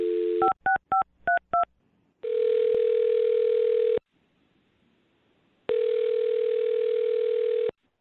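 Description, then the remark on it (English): A quick run of touch-tone dialing beeps as a woman's phone number is dialed, followed by two long, steady ringing tones separated by a pause of silence, heard clearly and alone as the call connects. “I'm dialing her phone number right now.”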